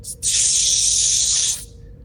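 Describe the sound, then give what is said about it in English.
A short burst from a spray can sprayed over the top of a shoulder: a brief initial puff, then a steady, bright hiss lasting over a second before cutting off, fairly loud with no voices. “You see him pull out literally a spray, and he sprays it over the top of his shoulder where the cybernetics meet skin.”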